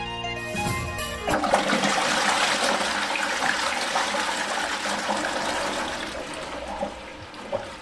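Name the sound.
toilet flushing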